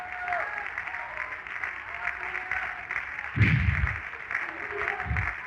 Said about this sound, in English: Come on, clap your hands and thank God you're anointed.